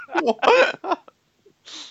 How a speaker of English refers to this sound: who just sneezed or coughed? I coughed. It sounded just like someone getting shot in the head with a silencer.